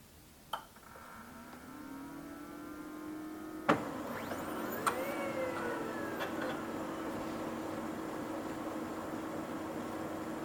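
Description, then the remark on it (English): A Brother 2713 DW laser printer, recorded without a magnetic pickup, starts up with a sharp click, then a motor whirs and climbs in pitch. More clicks follow before it settles into a steady mechanical hum. Nobody speaks. “For a Brother 2713 DW printer, this is the sound without the pickup.”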